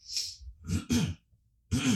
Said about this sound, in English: There we go, coughing into the microphone.